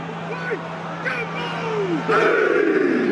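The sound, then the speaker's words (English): A haka war chant and dance performed at the start of a rugby match: many deep voices bellow together over a steady crowd roar, the shouting swelling louder and fuller toward the end. “they start each game with the haka, which is a kind of war chant and dance”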